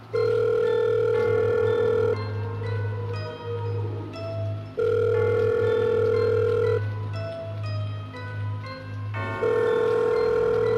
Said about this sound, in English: The phone rang several times.